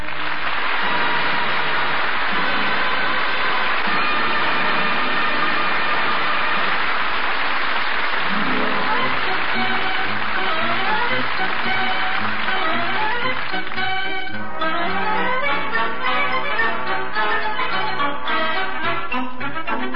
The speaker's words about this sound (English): Hear that? It's coming from the new power saw the Nelson's next-door neighbor Thorny has set up in his garage. Thorny's working on a project this morning, and David and Ricky are watching. Uh-oh, he's about to make a cut on a long board.